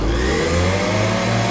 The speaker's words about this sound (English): Right, the coffee machine is turned on.